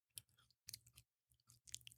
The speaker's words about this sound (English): Actually, I would like to try one of these chips. All right, it's a snack box episode for Christmas. It's another snack box. I want to hear you crunching,